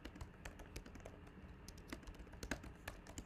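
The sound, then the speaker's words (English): Rapid, irregular clacking of keys on a computer keyboard, a steady stream of crisp taps over a low background hum, with no voices. “Oh, shit, wasn't typing nothing.”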